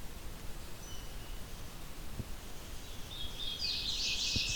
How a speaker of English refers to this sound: So scoping out places to place the, scoping out locations to place the bioacoustic recorder, came across this song, which I didn't immediately recognize, but is another song of the hooded warbler.